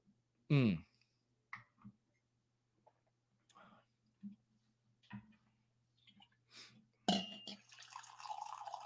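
Liquid poured into a glass: scattered soft drips and small clinks, then a steadier trickling pour near the end. A brief vocal sound comes early.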